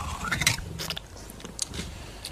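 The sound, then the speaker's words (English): A cat eats, with a run of quick crunchy bites and moist chewing clicks, irregular and fairly soft, with no talking. “I fed the cat.”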